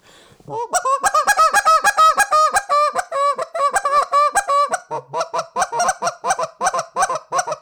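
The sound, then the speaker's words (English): A goose call blows a loud, rapid hiccup sequence of short honks, about two dozen clipped notes in quick rhythm, played alone with no talking. “And I'll kind of give you an example, like what I mean by like a hiccup sequence. It's going to be loud, but here it is.”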